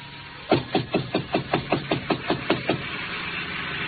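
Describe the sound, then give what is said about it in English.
A rapid series of about a dozen sharp, hollow knocks on the closed door of Chinook's little restaurant, evenly spaced and fairly loud, then stopping abruptly, leaving a steady low background hiss and no voices. “So I knocked on the door.”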